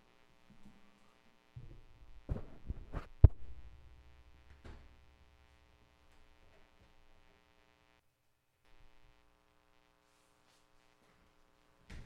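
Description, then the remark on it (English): A steady, quiet electrical hum buzzes through a microphone line, interrupted early on by a few low thumps and crackling rumbles before settling back to the faint drone. No one speaks. “I don't know if it's a cable or if it's just interference or if it's the microphone.”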